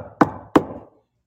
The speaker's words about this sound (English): He knocks. Excuse me. He does not force his way in. But if you open the door, he'll come in and sup with you.